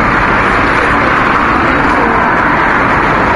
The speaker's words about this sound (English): Maybe it's just the sound of traffic people like. Maybe it doesn't have to be interior traffic. It might be exterior as well.